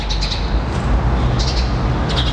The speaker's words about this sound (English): That's how it sounded this morning outside. Lovely. Birds were out. It was mild. Felt like a cool March day where the spring was starting to peak out a little bit.